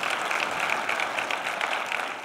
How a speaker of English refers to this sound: Would you guys stand up so the church can see who you guys are? Would you guys give them a big warm welcome, round of applause there? So glad that you guys are here.